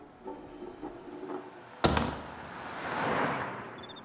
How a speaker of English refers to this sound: Lyle and Flo are out on the sidewalk late at night in Bridgehampton. They hear the door lock from inside.